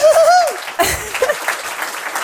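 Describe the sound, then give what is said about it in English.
An audience bursts into applause to vote for being drowned by an orca, opening with a high rising whoop from one voice, then a dense, steady patter of many hands clapping that holds fairly loud to the end. “Who, by show of applause, who would prefer to be drowned via orca?”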